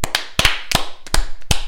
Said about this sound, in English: Why are you clapping for you? I beat underage drinking.